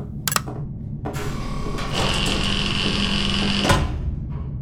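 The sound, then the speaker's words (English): A loud mechanical whirring and grinding runs for several seconds, with a sharp clank at the start and a heavy thunk near the end, like motorized doors sliding and locking shut. “Sealing all doors.”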